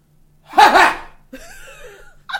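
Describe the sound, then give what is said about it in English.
A loud, exaggerated sneeze bursts out, voiced and theatrical, trailing into a drawn-out wavering groan before a quick sharp breath at the end. “It's such an old man sneeze.”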